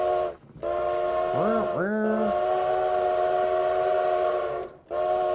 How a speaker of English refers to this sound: So all aboard, the train is getting ready to depart.